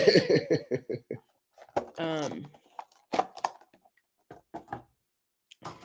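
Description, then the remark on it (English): Crisp, irregular crunches of someone biting and chewing a raw carrot, sharp dry snaps scattered across several seconds, with bursts of voiced laughter or talk early on. “So you need to either stop crunching or stop crunching.”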